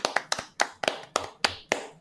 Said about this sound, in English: So it's a round of applause for Servo Token.